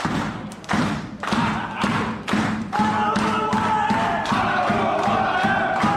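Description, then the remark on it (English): One of the boys drums a steady, even beat on a Powerade esky (plastic cooler box), about a dozen dull thumps, while a group of voices joins in with loud chanting and yelling partway through. “And one of the boys beats on a esky, Powerade esky, bump, bump, bump, bump, bump.”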